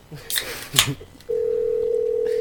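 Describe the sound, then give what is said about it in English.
A couple of brief rustling clicks, then a steady, loud telephone tone holds unbroken to the end, like a line being dialed before the call goes through. “Pick up your phone.”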